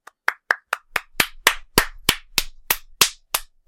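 Applause from what sounds like a single pair of hands: about fourteen sharp, close claps in a steady, slightly quickening rhythm, with no voices underneath.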